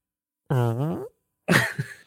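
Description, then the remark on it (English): A voice imitates a fart: a loud, buzzy, wavering blurt of about half a second, a brief pause, then a shorter, sputtering, breathy raspberry, alone with no other talk. “She farted while you were making it?”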